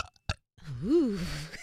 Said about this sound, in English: I have to burp here. Excuse me.